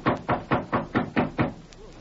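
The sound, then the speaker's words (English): Seven firm, evenly spaced knocks on York's door, each a solid thud with a short ring. They come in a quick steady rhythm, with no voices. “I'll knock to let him know we're here.”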